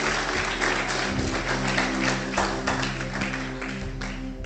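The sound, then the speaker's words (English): An audience claps steadily for several seconds, a dense wash of many hands with a few sharper individual claps standing out, fairly loud and unbroken. “I think it's a good place to clap.”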